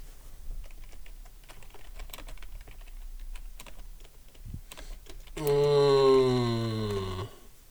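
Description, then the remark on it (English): Quiet, irregular clicking of keys on a computer keyboard for several seconds, followed near the end by a brief, sustained voiced hum or groan that drowns out the typing. “They're looking down at the keyboards and right. stuff down.”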